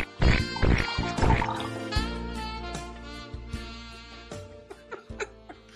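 Old-school cartoonish fart sound effects found by a Google search: a few loud, buzzy, sputtering blasts up front, then a long low rumbling toot broken by scattered wet pops and squeaks. No one speaks.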